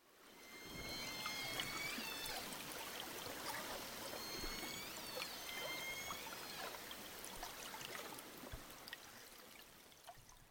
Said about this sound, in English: Well, that first clip I played featured the calls of a few southern resident killer whales, but the second clip was actually a boat winch.